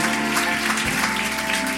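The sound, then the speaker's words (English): A crowd at a religious gathering claps steadily and densely throughout, a broad wash of applause with some scattered cheering mixed in, fairly loud and sustained without pause. “Come on, that's not a golf clap.”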